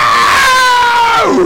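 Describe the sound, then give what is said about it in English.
A voice imitates the eerie, drawn-out screech of three figures floating in the air, a loud high wail held steadily before sliding downward at the end, with no other sounds around it. “These 3 screeching figures start floating in the air around you.”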